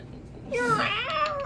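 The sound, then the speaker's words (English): A person's voice imitates a cat, letting out a loud, drawn-out meowing scream that wavers and bends in pitch, starting abruptly after a quiet moment and trailing off near the end. “Less kitty cat.”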